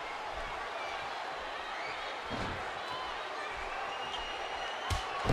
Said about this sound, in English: Chavo now slamming Severn's head into the canvas.